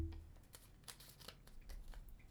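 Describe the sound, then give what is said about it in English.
Soft paper rustling and crinkling as colorful paper slips with questions written on them are drawn out of a mason jar, a quick series of light scratchy brushes over about two seconds, with no talking. “it is my beautiful little mason jar filled with colorful pieces of paper with questions, and we'll each draw a couple and talk about them.”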